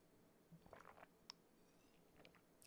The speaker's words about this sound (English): I'm going to have a little water break. Normally I do this when the guest is talking, but we're going to have a little ASMR 4 seconds of silence. Well, not silence, of gulping. Enjoy it.